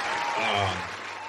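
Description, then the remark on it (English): A short, steady burst of crowd applause, dense and fairly loud, with faint voices mixed in beneath the clapping before it eases slightly at the end. “Claps to her.”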